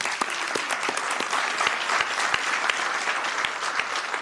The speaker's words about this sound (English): So that deserves a round of applause.